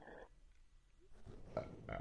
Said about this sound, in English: My throat was like. Yeah. And then I had to burp it out